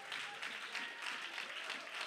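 A church audience claps their hands in praise to God, a dense, steady wash of many hands applauding together, fairly quiet, with no voices standing out.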